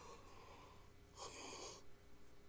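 yawn

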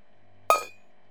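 glasses clinking

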